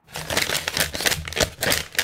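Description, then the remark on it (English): Crinkling and crisp snapping of folded origami paper being worked back and forth, a quick series of papery clicks and rustles with no voices. “I'm going to consult my psychic origami.”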